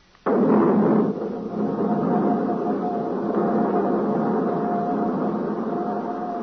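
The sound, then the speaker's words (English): The right jet engine of aircraft RJX-1 fires up before takeoff with a sudden loud burst, then settles into a steady, heavy roar with a thin whining tone running through it until the end. “Starting right jet.”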